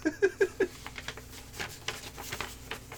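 A paper page is flipped, giving a run of crisp, irregular rustles and crackles after four quick, squeaky tonal blips at the start. No one speaks.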